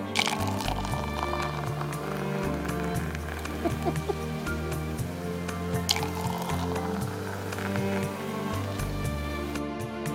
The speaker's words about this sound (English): And then they get back in the pool, and then they get the fuck back out of the pool, and they're giggling while he's pouring champagne, and it sounds like someone's taking a whiz.